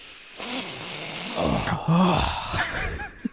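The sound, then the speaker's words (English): Loud, harsh nasal sniffing and snorting, a few overlapping noisy bursts over about three seconds, done by voices imitating snorting a line of cocaine, with a sharp final sniff at the end. “But everyone get out your lines of coke and join us in a sniff.”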